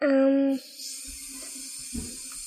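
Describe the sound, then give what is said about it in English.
A steady, soft hiss of water rushing through pipes upstairs, heard from a basement, continues for a couple of seconds, following a brief, loud tonal hum at the very start. “That noise, that shh. Water. Water upstairs.”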